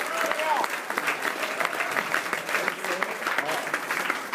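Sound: audience applause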